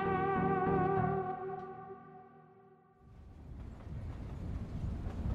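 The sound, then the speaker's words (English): A sustained, whistle-like tone with rich harmonics fades out, then a steady rumbling clatter of a train car rolling along rails builds and continues, on a chilly November morning in 1940, on the first leg of a long journey to Portugal. No one speaks. “Josephine sat in a train car on the first leg of a long journey to Portugal”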